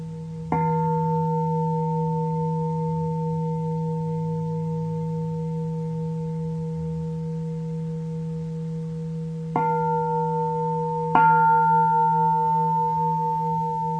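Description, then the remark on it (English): A bell is struck three times: one strike, a long pause while its low, steady tone hums on, then two more strikes close together, each ringing out with a sustained, shimmering resonance. “Just count how many times the bell rings.”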